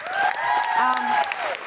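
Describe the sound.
An audience bursts into a steady round of applause for the person meant to be recording the event, dense overlapping claps holding at an even loudness throughout, with a voice or two cheering over the clapping.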